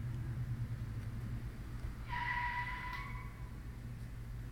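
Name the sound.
car brakes screeching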